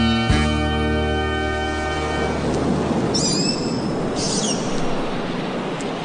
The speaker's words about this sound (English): Those are real sounds of the baby beluga.